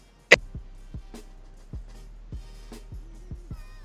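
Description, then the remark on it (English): A timer clock ticks with a string of sharp, dry clicks at slightly uneven intervals, the first one loudest, over a faint low hum with no one talking. “I'm going to restart your clock.”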